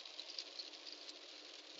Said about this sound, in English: So how does everybody like this rain? It's already flooding. Rivers are up.